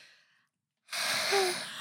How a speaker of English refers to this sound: I just made you yawn. God, I'm so tired.